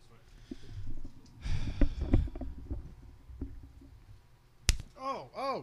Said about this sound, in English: just slapped the shit out of me.